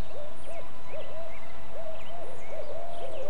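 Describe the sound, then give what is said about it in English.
An owl hoots in a quick, steady series of short, clear notes, set against a hissy forest background with faint, scattered higher bird chirps. “Sound is really important for spotted owls.”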